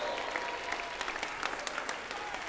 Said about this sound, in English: Clap your hands, everybody. Clap your hands. Get up on your feet. Make a joyful noise to the Lord.